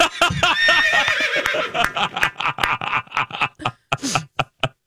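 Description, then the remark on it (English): A horse whinnies loudly, a high wavering neigh that breaks into a series of quick, choppy snorting pulses before fading out. “And the horses came and they were like, maybe somebody misheard us.”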